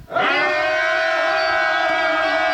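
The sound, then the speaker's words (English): The army of Israel at Jericho lets out one loud, sustained shout with many voices, holding a steady high pitch for about two and a half seconds without dropping off. “And when the people shouted with a great shout, the walls of Jericho fell down flat.”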